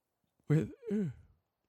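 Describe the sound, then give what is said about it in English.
A big, drawn-out yawn from one person, voiced with a rising then falling groan that trails off, heard alone with no talking. “Big yawn there for a second, sorry.”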